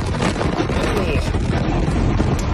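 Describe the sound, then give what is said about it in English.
An explosion's shockwave slams through the window of a car as its driver drives and films, heard as a loud, continuous roaring rush with deep rumble and hissing wind-like noise that stays steady for the whole stretch; the inside of the car is destroyed. “That's the shockwave coming through the window.”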